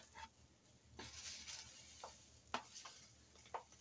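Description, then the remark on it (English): A spoon stirs instant coffee in a cup, giving light, irregular clinks and scrapes against the sides over a soft, steady hiss, with no one talking. “Making me some instant coffee.”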